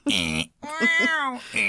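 cat meowing in distress

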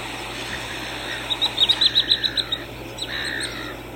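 birds chirping

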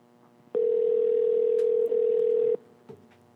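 telephone dial tone

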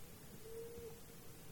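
owl hooting

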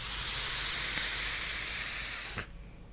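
vape device hissing

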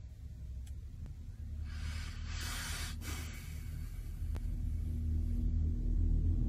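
sneeze

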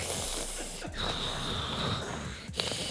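loud snoring

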